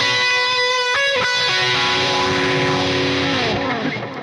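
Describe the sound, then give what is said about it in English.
A sustained, heavily processed electric guitar played with detune, delay and phaser modulation effects, a detuned, chorus-like shimmer and trailing delay repeats, loud and dense, with a wobbling, swirling modulation as the notes ring out. “Plus detune plus delay. And washing machine.”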